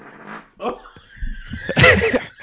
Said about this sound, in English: Little's coming out the back end. I'm laughing too hard. I'm farting. I'm laughing. Oh, God, that came through.